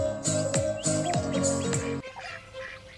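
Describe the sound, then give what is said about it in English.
Birds chirping and calling, with a run of loud, repeated harmonic calls for about two seconds, then softer, scattered chirps continuing in the background. “Witness the incredible variety of migratory birds that flock to the coastal waters of Drayton Harbor”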